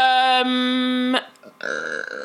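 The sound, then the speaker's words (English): A long, loud, tonal burp drones for about a second, followed by a brief pause and a rougher, breathier belch-like rumble. No talking. “I tried to do it away from the mic.”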